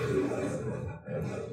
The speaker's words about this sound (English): Wow, Tiger, you're so loud. I used to know the name of that lion, the MGM lion.